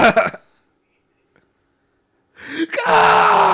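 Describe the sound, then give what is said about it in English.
A man cries out in pain in a film scene as his scalp is cut: a short strained vocal burst, about two seconds of silence, then a loud, harsh, sustained scream that builds and holds to the end. “His screams are just. Oh!”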